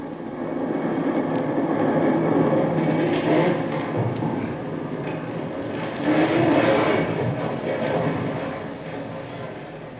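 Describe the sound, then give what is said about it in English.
The reverberations of a massive explosion, as a castle's powder magazine blows up, roll on as a steady, broad roaring rumble for the full ten seconds, swelling slightly midway, with a few faint sharp crackles scattered through it. “Just as Jungle Jim reports back to the camp of Captain Swain, who is in command of the landing force of Marines, the very earth trembles with the force of a tremendous explosion whose reverberations can still be heard.”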